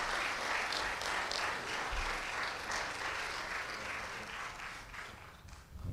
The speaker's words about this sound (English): So give them a hand, give them a round of applause here as they come.